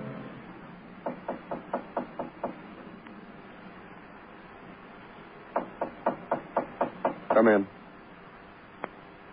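Two rapid series of about six sharp knocks on a door, a few seconds apart, fairly loud, followed by a brief rattling burst and one last faint tap.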